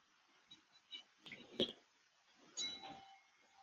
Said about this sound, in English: I'm now going to ring the gong to allow it to sing, to chime.